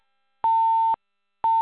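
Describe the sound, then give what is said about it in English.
A phone's electronic beeping tone on a conference call line: a steady, clear beep about half a second long, a pause of equal length, then the next beep starting. It is fairly loud, with no one talking. “Probably somebody fell asleep and not realizing their phone doing that.”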